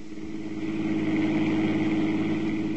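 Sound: car driving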